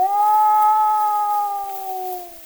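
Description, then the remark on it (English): A single long wolf howl, a hunting assembly call, held steady and clear for a couple of seconds before sliding slightly lower and fading, over a faint background hiss; from The Hunting Wolves, an Edison cylinder recording made by Ernest Thompson Seton in 1920. “A long call that means, come, let us go hunting. That is their assembly.”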